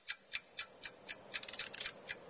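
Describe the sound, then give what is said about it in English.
A New Year countdown clock, set to 60 seconds for a trivia bonus round, ticks steadily, about four crisp clicks per second, with a brief flurry of quicker, overlapping ticks in the middle; clear, with no voices. “Let's put 60 seconds up on the New Year clock.”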